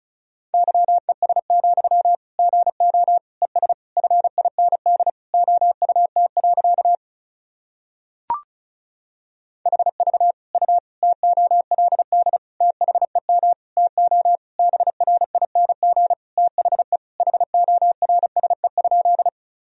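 Fast Morse code sent at 35 words per minute, spelling sentences from the top 500 words and abbreviations: beeps in a single steady mid-pitched tone, keyed in rapid dots and dashes across two long runs split by a short pause with a faint click, no voices.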